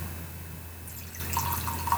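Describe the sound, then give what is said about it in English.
Liquor is poured close to the microphone, a bubbly, gurgling splash of liquid that starts after a brief quiet pause and continues steadily to the end, with no one talking. “I'm trying to pour liquor in the mic”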